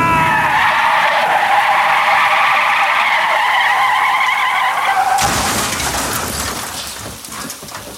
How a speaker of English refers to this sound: The storm is a-raging. The roads are a-flooding. Not a good time for a road trip. Slow down, there's a tree in the road. Oh my God, the brakes don't work. I can't stop.